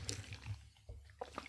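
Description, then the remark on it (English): A quiet morning sip of coffee: a soft slurp followed by a few small wet, liquid swallowing sounds, with no talking. “Hold on, I'm going to take a sip.”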